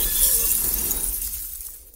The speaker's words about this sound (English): DOV2, we have engine failure. We must crash land on DKE Toy Planet. Oh my, we're doomed.